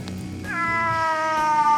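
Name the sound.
cat meowing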